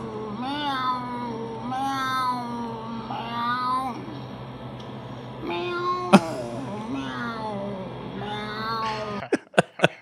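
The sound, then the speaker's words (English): A man of about 40 in a TikTok video imitates a cat, letting out a series of long, drawn-out, wailing meows back to back, loud, ending with a few sharp clicks. “This is like a 40-year-old man. Meow like a cat.”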